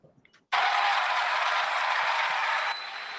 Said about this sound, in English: It's funny to hear boos, but I also hear clapping. That's interesting.